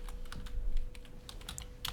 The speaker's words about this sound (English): You put your mic close to the keyboard so they can hear you clicking. So you sound like you're actually fucking doing something.